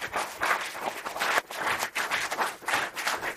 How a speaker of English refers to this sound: How about we give our panelists a round of applause? Being so open and sharing their stories.